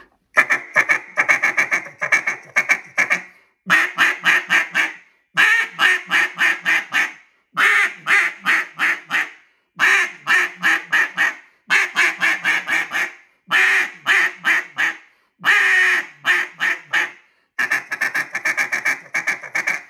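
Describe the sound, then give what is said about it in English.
A duck call blown loud in a cut-down, sounding a barking hen: rapid, choppy bursts of raspy quacks, each run lasting a couple of seconds, with brief pauses between them and no talking. “For me, I never had to use that to finish ducks to shoot them, so I'll kind of give you the cut down.”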